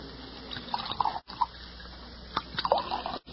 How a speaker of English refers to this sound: Set out a couple of glasses in that bottle you've got your hand on. We'll pour our own. Yes. Yeah, I'll pour yours,